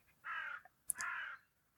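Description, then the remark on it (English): Two harsh, drawn-out crow caws in quick succession, loud, with a sharp high click between them and the start of a third call at the end, as crows gather around trees in a field under thick clouds. No talking. “Soon it'll be time for the rooks and the crows and their jackdaw cousins to begin to gather for their evening patrol.”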